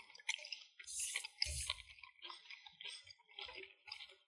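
Quiet chewing of pepperoni, similar to store-bought log pepperoni: a run of moist, crunchy bites and smacks in an uneven rhythm, with a few heavier thuds mixed in and no talking.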